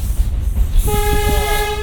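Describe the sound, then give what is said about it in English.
A train horn sounds one loud, steady, chord-like blast that begins partway through and holds to the end, over the low rumble of a passing train. “Long, short, long.”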